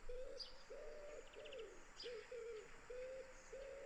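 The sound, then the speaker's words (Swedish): A dove coos in a steady run of about seven low, hollow notes, clear, with faint chirps from other birds high in the background. “Duva.”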